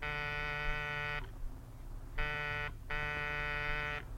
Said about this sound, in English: Oh, ring again, sweetheart. They must be home. There's a light on in the living room. Well, they could have gone off, forgotten. Oh, go on, go on. Buzz the buzzer.